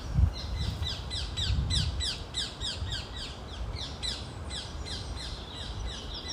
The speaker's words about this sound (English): They're parakeets, they're green birds. You might have seen them around London. They're not native to here, as I may have told you before.